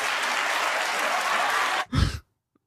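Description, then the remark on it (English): A crowd applauds in a dense, steady wash of clapping for nearly two seconds, then cuts off abruptly, followed by a short breathy burst and silence. “Yeah, like a clap if you've ever wanted to kill somebody.”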